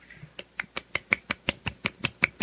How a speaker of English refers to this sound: What the hell? That's the sound of clapping with one hand. What the hell did you just do? It's almost like flailing your hand around and having your fingers, you know, hit the palm of your hand.